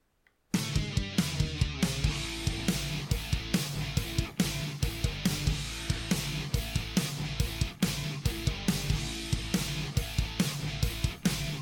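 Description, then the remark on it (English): After a brief moment of silence, a loud instrumental theme kicks in, with a steady, punchy drum beat driving under sustained melodic chords and bass. There are no voices. “Starting theme music.”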